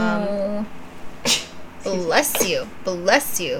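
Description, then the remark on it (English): A voice trails off, then one sudden, sharp sneeze bursts out, brief and fairly loud, before talking resumes in short animated phrases. “Bless you.”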